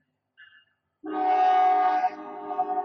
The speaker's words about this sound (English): We'll wait this train out. No, we won't. Fuck this train.